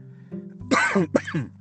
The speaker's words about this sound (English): I've been hit again by quite a nasty bout of COVID-19. I'm still sort of 4 months on, I'm still coughing quite a bit, but I'm getting there.